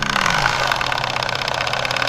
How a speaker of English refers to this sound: My interest is in live steam. That means it's the powered by steam. It's not, it isn't a faux kind of appearance of steam. It's actually engines that are powered by miniature boilers, fired by camping gas canisters.